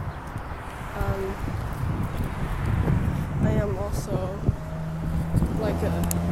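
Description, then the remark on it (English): Steady outdoor wind buffets the microphone on a quite windy day, a constant low rumble and rush running through the whole recording while a person on their way home talks over it. “I'm currently on my way home, and it is quite windy.”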